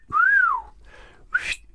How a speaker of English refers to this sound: I'm not going to try and do one now, but the wolf whistle. Give us your best whistle now.